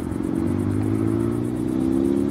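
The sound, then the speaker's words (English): A car engine in a film scene hums loudly and steadily, its pitch creeping slightly higher as it revs, with a faint high whine above and no voices. Niki Lauda is driving the car of two Italian men who give him a lift. “I love the two Italian guys that give him a lift, or rather he drives their car, and the way they're chanting, Niki Lauda, Niki Lauda, in the back of the car.”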